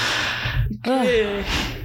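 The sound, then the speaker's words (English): A long vocal yawn: a breathy intake followed by a drawn-out, falling voiced groan that trails off into an exhale, loud and alone without words. “So sorry for yawning, guys.”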